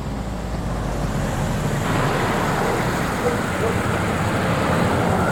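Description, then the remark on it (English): A steady, continuous roar of heavy traffic on a busy highway, with a constant low rumble and hiss and no distinct individual vehicles standing out. “You're backing out of the driveway into a busy highway.”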